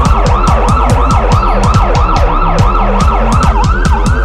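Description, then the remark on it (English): A loud emergency vehicle siren wails in a fast, repeating yelp, its pitch rapidly sweeping up and down in steady cycles, continuous with no voices. “Is that the sirens?”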